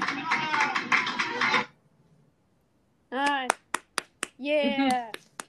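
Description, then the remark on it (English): A canned laughter-and-applause effect: a burst of dense clapping and crowd noise, a short pause, then voiced laughs punctuated by a few sharp, separate claps. “Okay, I can hear the laughter and the clapping now, but that first go-around took me off guard, and it's that frightened me a little bit.”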